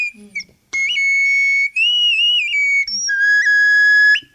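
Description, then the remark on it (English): A whistle is blown in three long, loud blasts, its shrill tone wavering and sliding slightly in pitch, with short breaks between them after a brief soft sound at the start. “This is the whistle sound that connects with all the elements of the air.”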